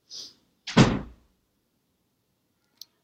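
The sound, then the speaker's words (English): A door is handled: a brief airy swish, then a solid, heavy thud as it shuts, followed by silence and a faint click near the end. No one speaks. “I love you, but stop opening and closing the door.”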